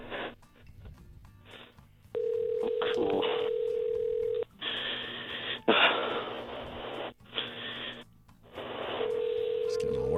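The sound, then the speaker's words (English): A tinny, phone-line ringback tone repeats in steady bursts with short gaps as a call to a former producer's cell phone rings on unanswered, with some muffled background noise between the rings. “Two times she was not there, so we can't have that.”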